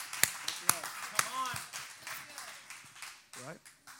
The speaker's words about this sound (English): I'll hand clap myself.